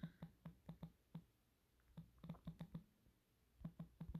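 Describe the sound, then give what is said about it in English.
Keyboard typing while texting someone, in uneven bursts of crisp clicks, several quick keystrokes, a pause, then more clusters. Fairly quiet, with no voices. “My typing skills are as good as my speaking skills, and that's not very good.”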